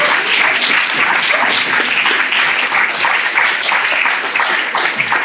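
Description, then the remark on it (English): A crowd applauds steadily for three speakers, a dense, loud wash of many hands clapping at once with no break for about five seconds and no voices standing out. “Can we get another round of applause, please, for our three speakers?”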